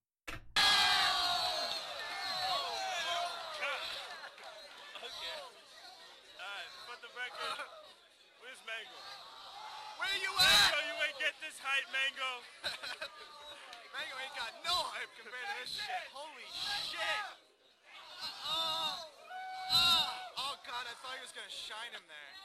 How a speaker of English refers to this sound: You can hear the community, like, cheering, like, this is a fight. They're cheering, like, this is a fight between, a fist fight. Because it is, this is a modern fist fight.